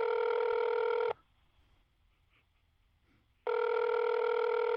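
A telephone ringback tone heard through the line: two loud, steady electronic rings with a quiet pause between them, no voices.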